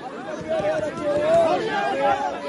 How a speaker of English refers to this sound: In the meantime, desperate scenes like this one played out on the border in recent weeks. A crowd of hundreds of migrants packed around a truck distributing food. Mostly men pushed to the front, catching rations thrown into the air.